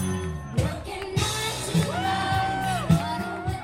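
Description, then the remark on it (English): A large crowd at an Elizabeth Warren campaign rally in Seattle cheers and whoops, with a sustained high whoop rising above the dense roar midway, while steady rhythmic thumps pulse underneath roughly every half second. “Today in Seattle, Elizabeth Warren saw one of the largest crowds of her campaign to date.”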